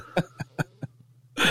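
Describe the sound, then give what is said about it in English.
A quick run of four short, sharp coughs in a steady rhythm, followed by a brief pause and a louder burst of breathy noise at the end. “So no, but well, no, I had to mute and I had to cough at the same time.”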